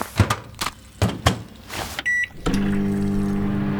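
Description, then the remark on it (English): A few knocks and clicks of handling, a short electronic beep, then a microwave oven starts up with a steady, loud droning hum that continues to the end. “I found a microwave! Now at least we can make the emergency popcorn I keep in my back pocket.”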